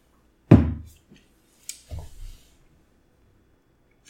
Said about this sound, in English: And now you're going to listen to me take a sip of my beer, because that's what this podcast is.